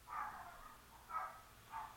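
A neighbor's dog barks, three muffled barks spaced about a second apart, faint against a quiet background with no one talking.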